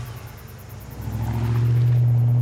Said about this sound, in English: Gets in his truck and starts for home.